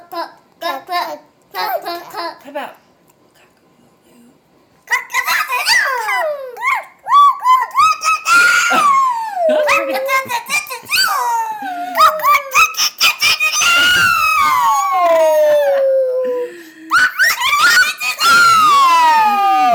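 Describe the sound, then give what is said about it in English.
A child imitates a rooster crowing with long, loud, high-pitched calls that rise and fall, repeated several times and sometimes overlapping, after a few short vocal bursts at the start. “What does a rooster say in the morning when the sun's coming up?”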